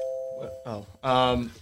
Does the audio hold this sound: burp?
no